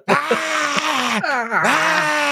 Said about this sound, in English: This like silver avatar of Pierce Brosnan. And Pierce Brosnan's like, it's really uncomfortable hearing James Bond scream like he's being killed.